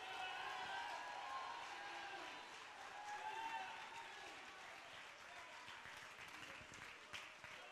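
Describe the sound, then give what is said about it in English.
A crowd claps and shouts together with a voice of triumph, with dense applause and scattered voices calling out at full volume, sustained throughout with slight swells before easing a little toward the end. “If you believe that, I want you to clap your hands and shout with a voice of triumph.”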